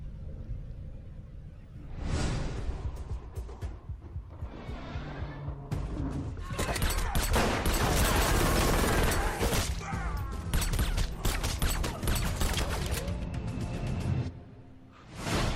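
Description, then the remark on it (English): Loud, dense bursts of gunfire crackle through the trailer for the 2014 film No Tears for the Dead, layered with whooshes, crashes and heavy rumble that build to a rapid volley before tapering off near the end. “As we heard from the trailer, the plot of this movie is gunshot, gunshot, gunshot.”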